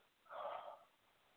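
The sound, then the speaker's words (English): A single short, congested snort or sniffle through the nose during an allergic reaction, moderately loud, lasting about half a second with quiet surroundings and no talking. “Now, alive on the air, allergic reaction breakdown, coughing, sneezing.”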